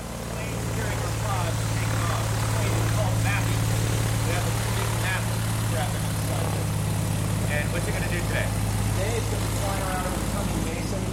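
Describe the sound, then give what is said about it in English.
A propeller plane taking off from the airport in Odessa, Texas, flies low at about 1,000 meters with cameras scanning beneath it; its deep engine hum drones loud and unbroken throughout, while indistinct voices talk over the noise. “So those planes taking off from the airport in Odessa, they fly low at about 1,000 meters, and their cameras scan what passes beneath them.”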